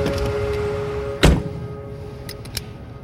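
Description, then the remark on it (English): A car door shuts with a single solid thunk, followed by a couple of faint latch clicks, all over a steady low idling hum. No one speaks. “Good choice. Get in the car.”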